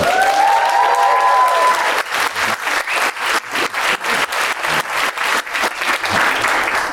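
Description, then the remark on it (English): An audience at a wedding photography event bursts into loud, sustained applause for an international documentary wedding photographer, dense clapping mixed with a few whistles at the start, holding steady for several seconds without any talking. “Can I get a big round of applause”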